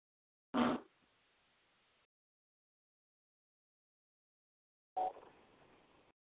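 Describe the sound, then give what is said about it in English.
Two separate fart sounds from a person, about four seconds apart, each a loud, abrupt blast that trails off into a fading rumble, with silence between them and no talking. “That was me farting myself.”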